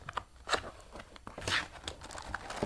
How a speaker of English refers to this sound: Look at this. It's all on paper here. I'm going to unwrap it.